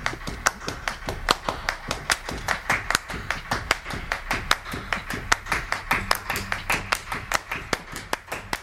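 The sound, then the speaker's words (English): Steady, sharp hand claps by a woman repeat in a brisk even rhythm over a low musical backing with no piano, each clap crisp, continuing throughout without voices; the clapping comes in the interlude of a recorded song. “she begins to clap”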